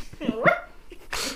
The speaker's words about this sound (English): Those freaking dogs, dude. Yeah. They're my dogs. They're your pup. Put those dogs away.